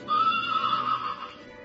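A single horse whinny, high and wavering, lasting about a second before trailing off into a softer breathy tail, with no voices.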